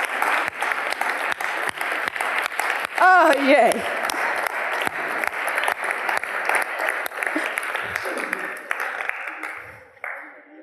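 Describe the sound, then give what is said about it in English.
A crowd claps steadily and enthusiastically for several seconds to welcome a guest for the new year, the applause dense, with a voice briefly calling out over it before the clapping tapers off near the end. “So you might have to just encourage him by clapping.”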